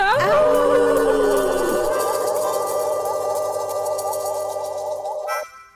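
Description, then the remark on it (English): Several voices howl together like dogs after a count of 1, 2, 3, howling at the Moondog on the Moondog Show radio programme. The pitches slide and waver in one long sustained group howl, then settle into a loud held chorus that cuts off abruptly. “Go ahead and back away from that microphone so you don't scream into it when we howl at the Moondog.”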